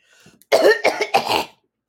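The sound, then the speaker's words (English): A man choking gives a loud, harsh cough: three rough, rapid bursts in quick succession after a faint breathy lead-in, with no talking. “He's choking. I need some water.”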